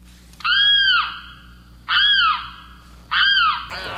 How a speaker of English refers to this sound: Not to worry, it's only our mystery bird. And this is a preview of our mystery bird contest coming on a little bit later in our program.